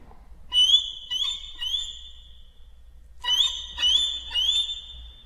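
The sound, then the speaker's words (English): A steely, high solo violin plays bird-like glissandi marked mezzo forte: two bursts of three quick upward-sliding squeals separated by a short pause, bright and prominent with no voices. “First of all, the first sound is marked mezzo forte now, instead of pianissimo in the original, and we have a steely high glissando on the solo violin.”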